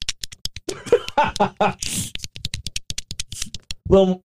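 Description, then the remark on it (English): A rapid series of short, wet squishing clicks, about twenty in a steady rhythm, as a licked, wet finger works in and out of a belly button, with brief vocal sounds mixed in and at the end. “And I'm going to shove it in my belly button, in and out. And look at, check out the noise.”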